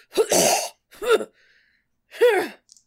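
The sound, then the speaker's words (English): A person gives three sharp, voiced gasps. The first is breathy and noisy, followed by a shorter one and, after a pause, a final rising-and-falling gasp, with no speech. “I'm going to step back and then gasp. But of course, when you gasp, there's a big intake of air.”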